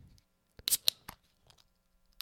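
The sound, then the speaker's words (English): A can of Promise Ring double dry-hopped double IPA from Blackstack and Modest Brewing cracks open: a few sharp metallic clicks and a quick hiss of escaping gas, then quiet with faint handling noises. No one speaks. “Good sip. Good crack. Good sip.”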